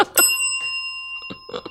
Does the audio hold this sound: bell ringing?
yes